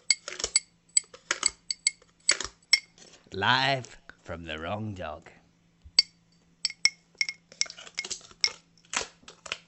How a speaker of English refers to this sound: In the meantime, you can listen to this little jingle that we've made.